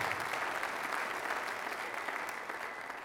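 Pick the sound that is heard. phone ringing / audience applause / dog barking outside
audience applause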